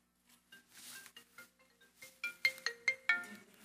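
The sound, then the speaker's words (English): A cell phone ringtone plays a bright, electronic melody of quick repeated tones, growing louder and more insistent toward the end, with no voices over it. “Silence your cell phones, please.”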